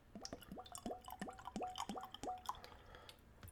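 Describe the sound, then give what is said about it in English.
Kahlua coffee liqueur glugs from a bottle into a small Glencairn nosing glass, a quick run of about six or seven rising gurgles, then the pour tapers off. No one speaks. “So, let's open up my bottle here. And I'll pour.”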